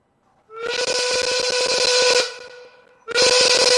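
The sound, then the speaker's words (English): A loud whistling hiss with a rattling, sputtering edge, as if something is caught in the whistle. It sounds in two blasts, the first trailing off before the second abruptly starts. “Something sticking in the whistle there.”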